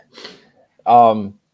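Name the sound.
coughing and throat clearing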